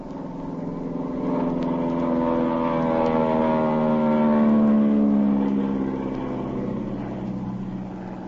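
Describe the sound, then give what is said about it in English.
A droning airplane engine swells louder as the plane flies low over a boat on the ocean, its whining tones sliding in pitch, then eases off again. It fills the whole stretch with no voices. “There's a boat off to the left. I just sighted it, Pat. I'm going to fly over them.”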